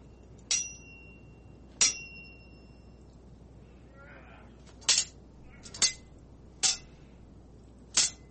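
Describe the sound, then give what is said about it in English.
A sword ratcheting sound effect: six sharp, bright metallic clinks at uneven intervals. The first two ring on with a high metallic tone, and the later ones are shorter, louder scrapes. “Sword ratcheting this time, guys.”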